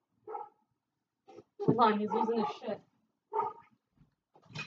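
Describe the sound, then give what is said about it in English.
A dog barks and yelps in a few uneven bursts, with a longer, excited run of barking in the middle, moderately loud. “likes to bark at everything, everyone.”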